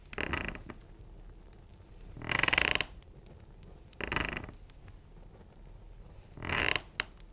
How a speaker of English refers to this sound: I wouldn't swing on your chair, Anne. I don't think it will last long on two legs